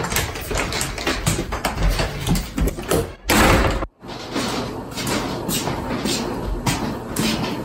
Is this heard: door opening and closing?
yes